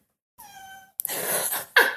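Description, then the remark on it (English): Cats meowing in a hallway: one clear, drawn-out meow with a falling pitch, followed by harsher, raspier cat cries in quick succession. No one speaks. “And sorry, my cats are making noise in the hallway.”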